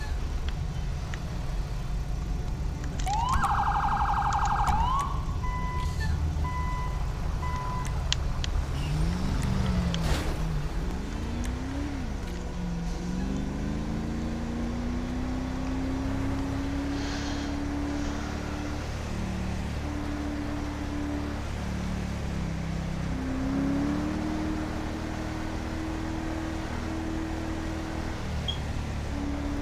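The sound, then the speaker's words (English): A car engine drones steadily at low speed, its pitch climbing slightly and holding as it creeps along in traffic, with a brief higher whine early on and constant rumbling background traffic. “I just want to know why it moves so slow. Back up. Their car would give me some space.”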